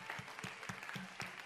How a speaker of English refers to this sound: One more time, why don't we give God a hand clap of praise today? Amen, amen.